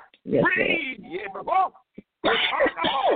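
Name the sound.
coughing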